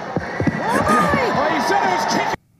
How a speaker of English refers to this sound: All right, so they throw the chairs at them.